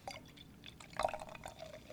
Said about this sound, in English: I'm pouring this beer in this glass. I don't know if this is going to work, but it sounded pretty cool from my end.